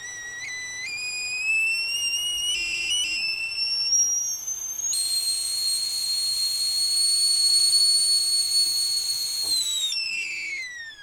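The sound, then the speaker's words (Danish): A kettle whistles shrilly as the water boils, its piercing tone sliding upward in pitch, wavering briefly, then holding a loud steady shriek before dipping and fading at the end, with a soft hiss underneath. “Lige om lidt, når vandet er klar.”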